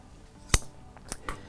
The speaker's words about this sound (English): I'm actually going to grab some scissors so that I can trim that a little bit.